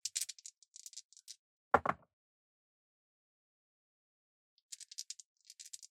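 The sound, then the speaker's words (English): Newly changed dice rattle in a cup or hand with quick, bright clicks during a game against a vampire, then land with a short, sharp clatter. After a pause, another round of light rattling clicks follows. “I've changed dice and I keep rolling sixes.”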